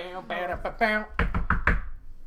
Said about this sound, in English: Guys, what was that? Oh, man. There was a knock at that door. I didn't like that knock.